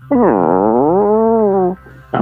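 dog whining and growling

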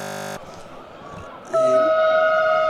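passing train horn

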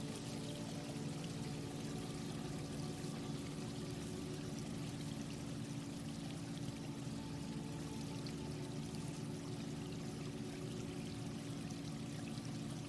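water pouring

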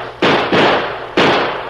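gunshots

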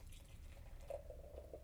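beer pouring

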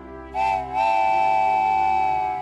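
steam engine whistle

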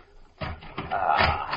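door being opened

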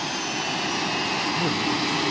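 jet airplane engine

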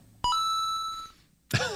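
phone beeping

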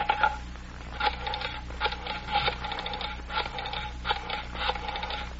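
dialing a telephone

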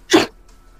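sneeze

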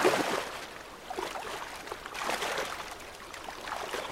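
flowing river water

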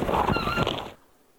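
duck quacking

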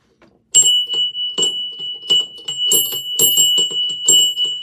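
handheld bell ringing

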